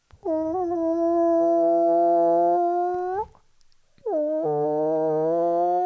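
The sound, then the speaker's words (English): A person's voice imitates chickens with two long, drawn-out nasal calls, each dipping at the start and rising at the end, separated by a short pause. The calls are loud and steady. The imitation is of the noise heard when approaching a chicken coop, as made by neighbours' chickens. “It's the noise that I hear outside sometimes because our neighbours on either side have got chickens.”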